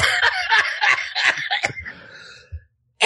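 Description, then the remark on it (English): Loud bursts of laughter break into rough, choppy coughing over about two seconds, then trail off into a breathy fade with a short gap before one last burst. “You know what's also awesome is that cough of yours.”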